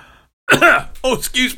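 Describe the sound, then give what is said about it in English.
A person coughs three times in quick succession, fairly loud, with short voiced bursts separated by brief pauses after a moment of near silence. “I'm just coughing in the middle of the end of the show.”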